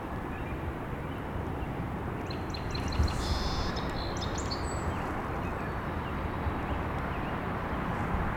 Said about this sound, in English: While all this is happening, I can hear sandhill cranes coming as well. And a lot of Canada geese. That really croaky, high-pitched call. Sandhill crane, but it's pretty far away.